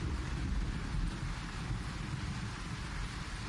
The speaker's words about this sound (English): And if you, this is going to go on for a little while, just this, the sound of the rain.